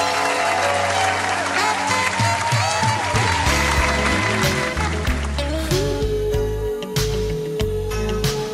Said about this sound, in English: Matter of fact, let's get some applause in this motherfucker, man.